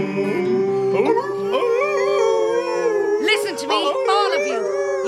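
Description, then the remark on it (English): A chorus of overlapping voices howling like a wolf pack, long rising and falling wails layered over a steady sustained tone, loud throughout. “We dance and sing beneath the moon. And it doesn't matter whether we don't all howl in tune.”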